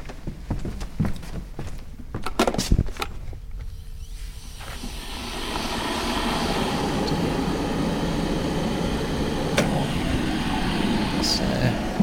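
electric kettle heating water

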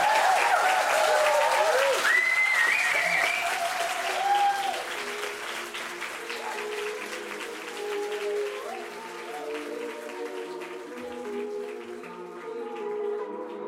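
audience round of applause

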